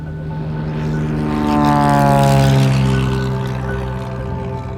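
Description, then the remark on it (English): A small single-engine propeller plane at Roskilde Airport, bound for the Baltic Sea gas leaks, drones steadily, its harmonic engine hum rising slightly in pitch and loudness midway, then easing back, with no voices. “Niels går ombord på ett litet enmotorigt flygplan med sikte mot Östersjön och gasläckorna.”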